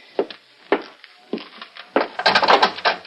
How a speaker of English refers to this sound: open up. I gotta bust down this lousy door.